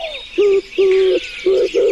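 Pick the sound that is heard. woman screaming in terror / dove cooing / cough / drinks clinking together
dove cooing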